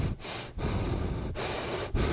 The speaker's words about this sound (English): It's not me, I'm not breathing. Me neither. It's you, …, with your big nose.